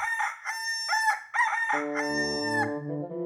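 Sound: rooster crowing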